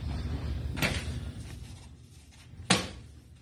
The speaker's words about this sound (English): Yo, he slammed that pin down with aggression. There it is.